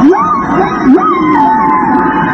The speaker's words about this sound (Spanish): Las complicadas pautas de las canciones de las ballenas a veces se repiten con exactitud. Si imaginamos que las canciones de la ballena de aleta dorsal son cantadas en lenguaje musical, el número de bits de información en una canción